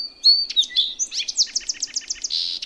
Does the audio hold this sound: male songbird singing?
yes